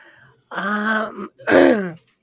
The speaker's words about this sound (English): sorry, I'm coughing a lung over here.